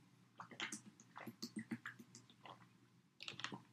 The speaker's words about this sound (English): Let me get my sip of water, my sip of lukewarm coffee, because I don't have my special coffee mug.